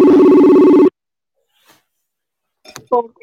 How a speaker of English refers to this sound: pick up the damn phone